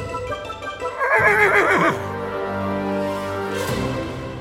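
A single loud horse whinny rings out, a shrill quavering cry that drops into a lower, rumbling neigh and fades over a few seconds, with no one talking.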